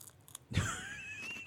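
Someone crunches on Beaver Nuggets snack, with a sharp bite and brief chewing followed by a faint, thin whistling tone. Nobody speaks.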